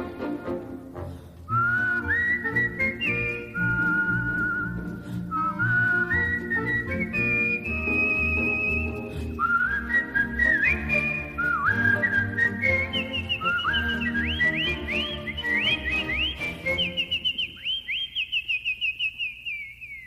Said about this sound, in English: When they're sorely pressed, they whistle for a spell, and whistling seems to brighten up their day.